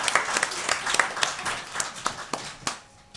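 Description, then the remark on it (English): A crowd claps in steady applause for a guest being welcomed on, dense overlapping claps at moderate loudness that thin out and fade toward the end. “Round of applause”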